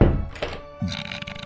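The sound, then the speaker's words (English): A door shuts with a heavy, low thunk, followed by a softer second knock and a faint lingering ring; no one speaks. “Dart closes the door and goes back to sleep.”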